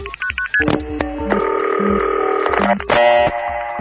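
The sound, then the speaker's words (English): A quick run of short touch-tone dialing beeps as a Los Angeles number is dialed, then steady electronic line tones that hold, shift and switch abruptly. Loud and clear, with no voices. “You dial the LA number, and at that point, your line takes away the tone for just a moment.”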